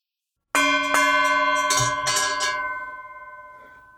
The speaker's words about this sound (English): That's a new musical feature. The gong. Today is the day to beat the gong.